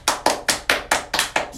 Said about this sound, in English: And they all clapped.